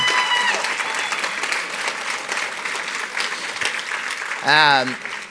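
An audience claps steadily and loudly for about five seconds, a dense wash of hand claps, with a brief vocal whoop rising above it near the end.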